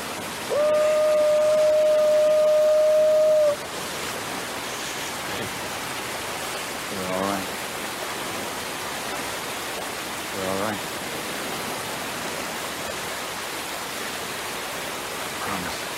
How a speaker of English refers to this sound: So we're back at the son and the dad at the waterfall, and he's very loud. Very loud. So loud that they can actually talk.